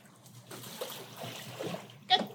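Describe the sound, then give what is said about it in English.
An animal splashes into water, a brief sloshing burst followed by a sharper splash near the end, with soft watery churning throughout. “Good job. In the water.”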